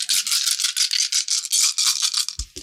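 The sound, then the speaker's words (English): Many small dice rattle hard inside a container, shaken in a quick, steady rhythm of bright, hissy bursts, with a low thump near the end, as damage dice are rolled for rubble pouring into a room in a tabletop game. No one talks. “God damn, it sounds like he's shaking a container of sprinkles.”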